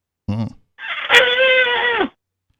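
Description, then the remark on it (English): A man imitates a moose call by yelling through hands cupped around his mouth while standing a ways back: a short throaty grunt, then one long, loud, nasal bellow that holds steady and drops off at the end. “make mine by cupping my hands around my mouth and then standing a ways back before yelling.”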